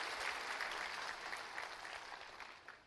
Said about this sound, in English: What a beautiful crowd. Turn to your neighbor and clap for him. Say, I'm glad you're here with us today.